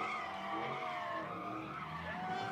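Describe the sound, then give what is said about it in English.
A stolen Dodge Hellcat muscle car skids continuously, its tires squealing in sustained, wavering tones over a steady engine roar, loud for the whole stretch. “That's a $90,000 Hellcat. And they're just smashing them.”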